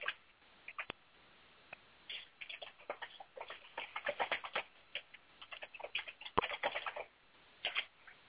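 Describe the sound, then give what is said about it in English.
Someone types on a computer keyboard in quick, irregular bursts of soft, quiet clicking keystrokes with short pauses between, and nobody speaks. “I hear a lot of typing going on.”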